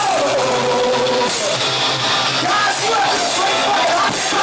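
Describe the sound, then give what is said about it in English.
A thrash metal band playing live in a live video: a dense, loud wall of distorted guitars and crashing drums, with shouted vocals riding over the top for the whole stretch. “They do look like a metal band, though. Yeah, that's a thrash band.”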